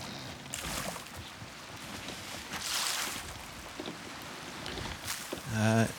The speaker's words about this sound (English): The ship's mast has taken damage. Oh boy! Are you still alive? Because I hear a lot of water. I'm downstairs trying to plug the holes.